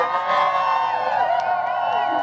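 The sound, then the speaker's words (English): A large crowd of thousands, gathered to see President Biden in the coastal city of Capitola, just south of Santa Cruz, cheers and whoops continuously, a dense wash of many overlapping voices with rising and falling shouts, steady and loud throughout. “And thousands gathered to see the president as he promised to support the community's recovery.”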